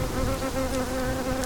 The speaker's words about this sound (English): Sometimes they're beautiful birds. Sometimes they're bees. But in this case, mosquitoes.